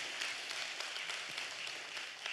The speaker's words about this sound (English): Thank you so much, team. I mean, can we give a round of applause for our team today? So good.